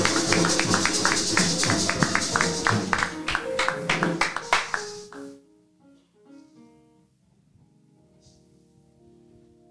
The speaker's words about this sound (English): I need a hand clap of praise.